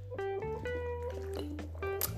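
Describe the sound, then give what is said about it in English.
Water spilling, a continuous gurgling, glugging pour with wavering tones and a few splashy bursts over about two seconds, with no one speaking. “Shit my water.”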